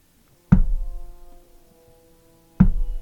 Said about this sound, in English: The knocking becomes heavier.